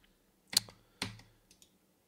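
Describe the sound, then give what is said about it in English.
A few sharp computer keyboard keystrokes tap out irregularly, two louder clacks followed by a couple of lighter taps, with no talking. “I think my keyboard died. No, my keyboard is working now.”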